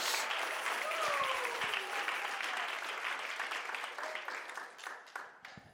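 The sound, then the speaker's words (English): A crowd claps their hands together to the Lord in a steady, dense wash of applause, with a few faint voices calling out over it before the clapping gradually thins and fades toward the end. “Come on, clap your hands to the Lord together.”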